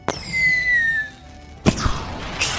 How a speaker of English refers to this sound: as the fireworks begin. Fireworks!